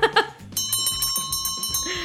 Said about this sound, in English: Nope, there's the closing bell